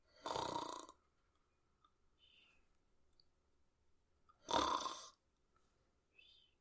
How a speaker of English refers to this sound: I'm glad you finally owned up to snoring, because you denied it for a very long time.